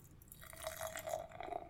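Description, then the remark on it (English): Dark, black beer with ruby highlights pours into a glass, forming a khaki-colored head of tiny bubbles; a steady liquid gurgle with a rising fill tone lasting under two seconds, moderately quiet, with no talking. “And the pour?”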